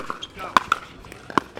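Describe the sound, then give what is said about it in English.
Several sharp, hollow plastic smacks of pickleballs striking hard asphalt courts at a Chula Vista park on a warm Thursday evening, arriving irregularly, about three loud hits and a few fainter ones, over a faint murmur of voices. “Emanating from a Chula Vista park on a warm Thursday evening is the sound of hundreds of plastic pickleballs slamming into hard asphalt.”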